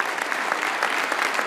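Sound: audience round of applause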